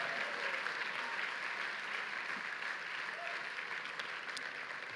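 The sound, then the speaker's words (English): An audience claps their hands steadily for about five seconds to give God praise, a dense, even wash of applause that holds at a fairly loud level throughout with no voices standing out. “Can you just take 5 seconds, clap your hands, and give God praise if you believe?”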